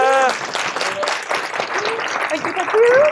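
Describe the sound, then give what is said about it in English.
An audience breaks into sustained applause welcoming a keynote speaker onto the stage, dense overlapping clapping filling the room at a steady, fairly loud level, with brief vocal sounds like a cheer or a voice poking through. “So can I give a massive round of applause”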